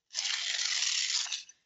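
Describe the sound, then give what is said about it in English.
A single sheet of paper is torn in one steady, rasping rip lasting over a second, fairly loud, ending with a small final snap. No one speaks. “Shred that piece of paper, not once, twice, three times, 10 times, until it is so small that that doubt is diminished.”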